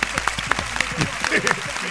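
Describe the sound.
A small audience on the show Diablo's Den claps for a couple of seconds: a steady, uneven patter of sharp hand claps at moderate loudness, with some voices mixed in underneath.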